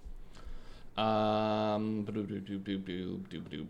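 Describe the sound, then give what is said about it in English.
A loud, drawn-out voiced sneeze bursts out, followed right away by people talking. “Bless you. Bless you.”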